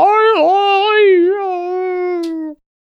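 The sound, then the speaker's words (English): A person's voice imitates a dog trying to speak, producing one long, whiny, wavering vocal sound that dips and rises in pitch for a couple of seconds before cutting off. “you know how like when you have like videos of like a husky and it sounds like it's saying I love you kind of thing, like could you like sort of like try to talk like a dog?”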